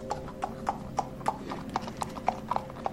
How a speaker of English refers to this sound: Suddenly you hear a pattering, a clinking of heels from what sounds like a horse.